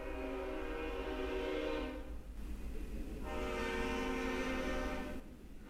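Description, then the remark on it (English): A train rumbles past and blasts its horn twice, two long, loud blares separated by a short gap, over a steady low roar of the cars. “Or the train, right?”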